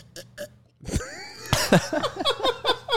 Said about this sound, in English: That was the most kazoo sounding fucking sip I've ever heard. These weird glasses.